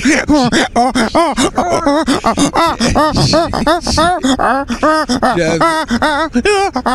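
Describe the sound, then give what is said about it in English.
A voice on a radio show imitates a donkey braying, a loud, continuous run of rapid, grunting hee-haw cries that rise and fall in pitch for several seconds without pause. “That's a donkey.”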